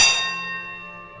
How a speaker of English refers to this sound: She pulls out this kind of rusted bell on this wooden platform. This is the original starter's bell from the Meadow training track. That bell taught Secretariat in Riva Ridge how to jump out of the starting gate.